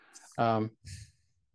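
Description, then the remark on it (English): Breathy noise picked up on a microphone: a soft inhale, a brief voiced sigh-like sound, then another airy exhale, all fairly quiet. “There's some breathing there on your microphone somehow that keeps coming through.”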